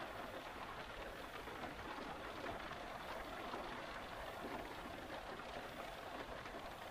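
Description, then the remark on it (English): A steady wash of rain falls continuously on the roof of a car, a soft, even hiss with fine pattering throughout and no voices. “A perfect little nest, just until the rain passed.”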